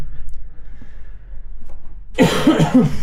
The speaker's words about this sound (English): No, I've had the cough for about 3 weeks now.